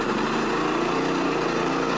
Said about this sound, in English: A generator drones on outside Nick Gutierrez's Soul Rebel Coffee and Juice Bar. The sign in the door reads, closed, no power on west side of Calistoga.